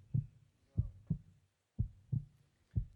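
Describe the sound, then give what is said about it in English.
A crowd of people imitate a heartbeat together, producing low, thumping lub-dub pairs in a steady rhythm, three double beats over a few seconds, with no talking. “So to help us, just help me, guys, with, if you would, heartbeat.”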